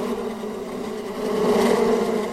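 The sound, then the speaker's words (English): A dense, steady drone of many bees buzzing loudly from an 8-foot beehive in a house, swelling slightly louder partway through, with no voices. “Well, eventually when the bees were just so loud that they couldn't even sleep anymore, they called in the real experts to try to get the buzzing to stop.”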